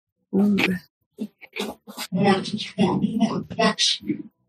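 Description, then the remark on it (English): A person growls and snarls in short, rough vocal bursts, imitating an angry animal as the character Raka growling back in a game, fairly loud, with brief pauses between the guttural sounds. “Raka's going to growl back.”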